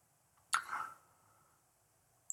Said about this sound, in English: let me take another sip.